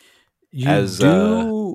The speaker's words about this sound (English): I spin a wicked yawn from time to time, but I'd have to rank that one as one of my better ones.